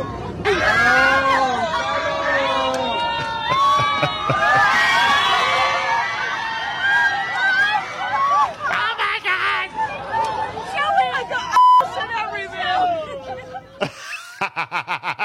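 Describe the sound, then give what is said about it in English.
Passengers on a plane erupt in cheers, whoops and laughter as a flight attendant opens the bathroom door, followed by bursts of clapping, lively, with overlapping excited voices throughout. “Listen to everyone cheer the flight attendant as he opens the bathroom door.”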